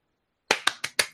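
Four sharp hand claps in a quick, even rhythm, like a brief burst of applause from a single person, welcoming a guest on a show, with no talking.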